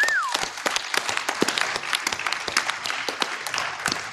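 A crowd applauds steadily, many hands clapping in a dense, irregular patter that holds at a fairly even loudness, with a brief high whistle at the start.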